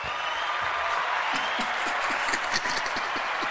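Steady applause from a crowd, many hands clapping in a dense, continuous patter with sharper individual claps popping through, sustained throughout at moderate loudness.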